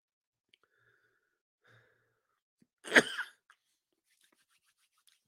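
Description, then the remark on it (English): A single rough cough bursts out of near silence, lasting about half a second, with only faint small clicks and rustles around it. “As you see, I still have this cough.”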